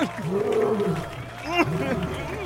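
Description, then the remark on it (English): A liger named Randy roars: deep, growling roars rise and fall in a couple of drawn-out bursts, loud, with a sharp snarl near the middle. “Oh my, it's a liger.”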